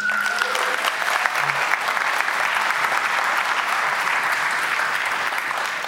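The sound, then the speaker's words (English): A crowd applauds steadily for a person called up to the front to give thanks to God, a dense, even wash of many hands clapping at a fairly loud, constant level for several seconds with no voices standing out. “Big clap.”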